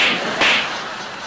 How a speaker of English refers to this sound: Barry grabs Larry and repeatedly slaps him over the face.